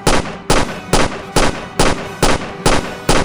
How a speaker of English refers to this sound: All those gunshots made it sound like you shot me. But in fact, that seems to be the noise your phone makes when it receives a text message.